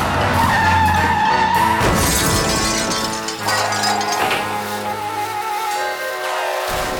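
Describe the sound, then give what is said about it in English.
A car's tires screech in a long, loud skid as it crashes into a lamppost, ending in a crunching impact with metallic clatter and tinkling debris, dramatic with no talking. “You missed the bus. And hit a lamppost.”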